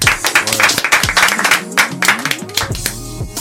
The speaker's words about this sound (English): Can we clap it up one time, y'all? Let's go.